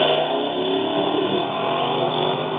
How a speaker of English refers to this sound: Gray, a flat gray in color. It's a Raptor truck. Exhaust up on the top, like that other one we had. We're starting to see a couple of these with a little different exhaust setup.